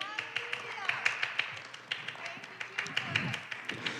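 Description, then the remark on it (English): A church audience claps hands in a steady, rhythmic beat in praise of God, the sharp claps ringing out while voices call and murmur underneath. “Someone clap your hands and give God praise.”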